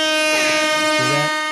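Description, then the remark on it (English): A horn installed on a small CRF50 dirt bike that is being restored gives one long, loud, sustained blast at a steady pitch, its buzzy, brassy tone holding for over a second without a break. “I'm going to beep the horn that I installed on it real quick.”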